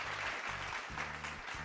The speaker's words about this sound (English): Thank you. They can have the clapping sound effect.